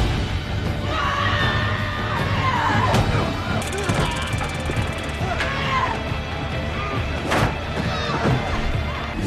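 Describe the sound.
In a film scene, a woman screams in fury amid a chaotic fight as a group of women storm a frat house, with loud crashes, sharp bangs and other voices shouting around her, all dense throughout.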